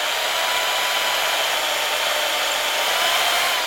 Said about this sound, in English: First, we take a block of pure sugar. That looks like concrete. No, it's sugar. Then we drill a hole in it.